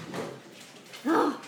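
A dog gives one short, fairly loud bark, preceded by a fainter, muffled yelp a moment earlier, with quiet room noise in between.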